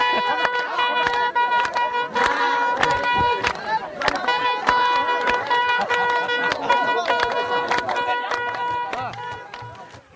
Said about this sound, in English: The folks here are singing honey water. They're that excited about it. Sweet water. This is sweet to their village. This is the village of Tej Wuha. And you can hear they're blowing the trumpet.